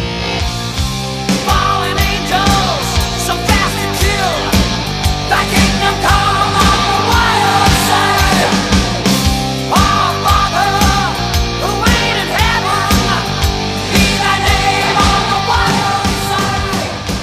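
A loud hard rock song plays throughout, with driving distorted guitars, pounding drums and a strained, shouted lead vocal over dense, sustained energy.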